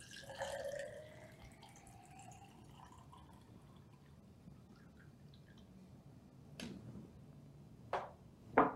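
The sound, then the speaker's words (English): Water is poured into a sport bottle for making hydrogen water, the rising gurgle of filling liquid, followed by a few sharp plastic clicks and knocks near the end. No one speaks. “So all we really do is take the water, pour it in.”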